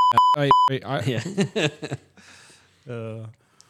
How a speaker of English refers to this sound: Might have to hit him with the old beep.